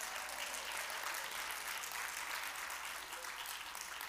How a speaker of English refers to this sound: Clap your hands if you're a Mickey Mouse fan.